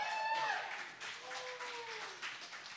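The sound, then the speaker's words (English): An audience applauds steadily for a poet after the poet's scores of 7 and 10 are announced, a dense wash of clapping that holds at an even level, with a few high whoops and cheering voices rising over it. “Applaud the poet.”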